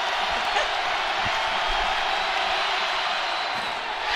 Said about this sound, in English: After Jordan Miller missed that free throw, the crowd's going nuts. Here's why. If he misses the second one, everybody in this house gets free bacon.